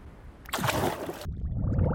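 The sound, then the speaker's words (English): A bubbling sound effect as a treasure chest is opened: a bright, fizzy rush of bubbles swells in, then settles into a lower, steady gurgle that continues to the end. No one speaks. “Uh-oh! Bubbles! Can you help me pop them?”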